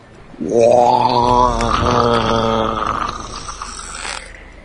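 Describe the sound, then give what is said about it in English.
A single long, deep monster roar swells up loudly and holds for several seconds, rough and gurgling with a wet rattle, then slowly fades out. No one speaks over it. “And a sound that chills you to your bone can be heard. A gurgling roar.”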